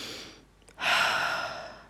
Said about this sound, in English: Why am I breathing this loudly? Hold on.